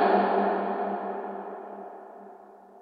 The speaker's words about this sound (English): Which is called plate reverb and has a very long tail.